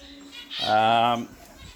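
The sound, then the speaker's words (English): A single drawn-out, tonal bird call rings out for under a second inside an aviary, set against a quiet, faintly busy background. “So, we've come up into the aviary.”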